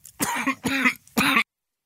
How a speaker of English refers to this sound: And apparently me coughing into your ear is another side of what I was here to do as well.